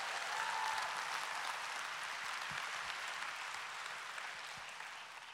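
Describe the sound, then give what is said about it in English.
An audience applauding, a dense, steady wash of many hands clapping together for several seconds, easing off slightly toward the end, with no voices audible over it. “Oh, is somebody gonna clap today?”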